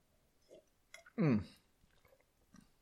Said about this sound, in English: I'm going to have a sip.